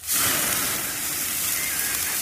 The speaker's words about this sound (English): Where's the button sound? Want that sizzle?